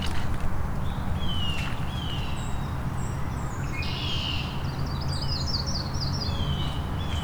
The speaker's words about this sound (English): I think it was a yellow-rumped warbler, but I'm a little out of practice.